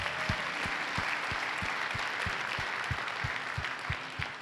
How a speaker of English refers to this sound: Can we put our hands together and thank Pastor Gary for that message?